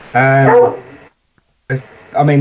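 A dog barks loudly at the door in two drawn-out bursts, separated by a short silent pause, the barks sounding strained and almost whining.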